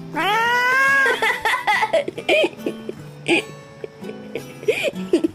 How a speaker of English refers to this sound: Four cats.